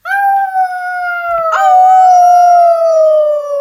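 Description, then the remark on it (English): A recording of a person imitating a wolf howl with one long, loud, steady wail that slides slowly downward, breaks briefly midway, then carries on and fades, sounding alone. “Actually, that was just a recording of someone howling like a wolf.”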